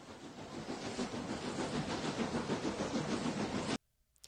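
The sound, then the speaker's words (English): A train rumbles steadily past at Union Station with a dense roar and quick, regular clacking of wheels over the rails, loud, then cuts off abruptly into near silence. “So much more than a train station, it's a piece of history, and a beautiful one at that.”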